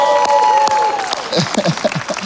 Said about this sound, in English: And can we just give another round of applause for our Stevens Point campus? Woo!